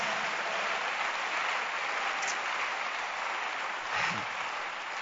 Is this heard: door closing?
no